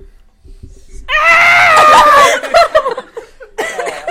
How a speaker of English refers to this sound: Yeah, you let out a nice scream, and that sounded like Mount Nessa, didn't it? I think that sounded like it was. That sounded like it was underground.